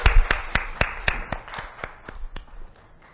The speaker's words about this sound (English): So let's give God a warm hand clap of praise.